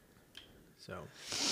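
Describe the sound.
A few short, breathy sniffs, the last one longer and louder, with a brief murmur of voice in between.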